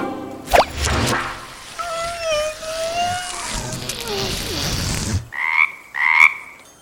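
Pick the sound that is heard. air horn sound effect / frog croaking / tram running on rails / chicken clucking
frog croaking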